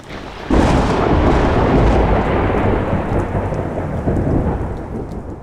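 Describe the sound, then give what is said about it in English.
A distant thunderstorm over the sea: a loud thunderclap from a lightning strike bursts in after a half-second lead-in and rolls on with a deep, sustained rumble, heavy rain hissing steadily underneath throughout. “In the distance, storm clouds form and a burst of lightning strikes the bird and it drops Morgan.”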